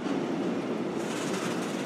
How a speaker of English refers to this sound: Every one of those trains you just heard going over the Alps carries close to 500 tons of pasta, 60 tons of sauce, all of that sloshing over the mountains in those trains.